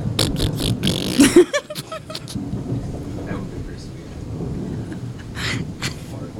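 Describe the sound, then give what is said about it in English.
A voice blurts out a loud, buzzy fart imitation about a second in, over a rough, rumbling background of noise and indistinct vocal sounds. “Just make a fart noise into the air horn sound.”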